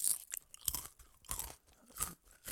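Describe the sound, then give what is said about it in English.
Crunching of a dry, lightly salted Wheat Thins Originals wheat cracker being bitten and chewed, several sharp brittle crunches in an irregular rhythm with brief pauses between them, no talking. “I'm going to take a bite here, let me see.”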